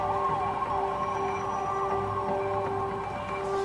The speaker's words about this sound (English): Here's a little bit of the here is the nuclear preparedness PSA, which sounds like, if you're from the Midwest, a tornado drill.